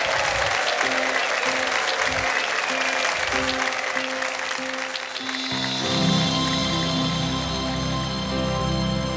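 Steady, dense applause from an audience welcoming a singer fills the first several seconds, then an orchestral musical intro swells in and continues beneath the fading clapping.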